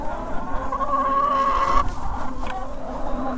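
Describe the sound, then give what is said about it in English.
A rooster crows once, a drawn-out, steady call lasting about a second, loud over a busy farmyard background of low rumbling and faint clucking. “That's a proud rooster”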